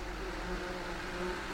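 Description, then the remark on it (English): A real recording of wasps flying about from a nest outside a bedroom window in summer: a continuous low, droning buzz with a steady hum and a rough, hissy texture that stays fairly loud throughout, with no voices. “A real sound of wasps flying about.”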